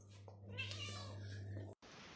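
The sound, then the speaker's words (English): A single drawn-out cat meow, fairly loud, rising and then falling in pitch over a steady low hum before cutting off abruptly. “Oh, you're taking your Meow Maths GCSEs.”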